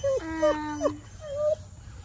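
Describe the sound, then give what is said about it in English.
A young female puppy on a homestead whimpers and lets out a short, wavering howl, then a second thinner whine follows; the cries are fairly loud over a low background rumble. “That's probably the hardest thing on this homestead is this little pup here.”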